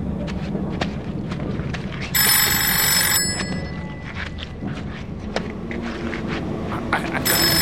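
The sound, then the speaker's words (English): A telephone bell rings loudly in one burst of about a second, then starts again at the very end, over steady background noise and scattered footstep-like thuds. “Do you hear that? It's a phone.”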